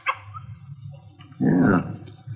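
A female puppy whimpers softly, then lets out one loud, drawn-out yelping bark before settling back into quieter whines.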